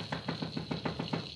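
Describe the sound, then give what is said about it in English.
Rapid, steady pounding on a door, about ten heavy thuds in quick succession over a low background hum, with no voices. “Turn the knob instead of breaking it down.”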